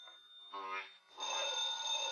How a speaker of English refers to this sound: Oh! Was that the phone? He pulled it to the floor.